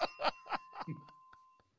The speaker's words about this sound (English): Yes, it's a real bell, too. Listen, it's not a computerized bell. Yeah.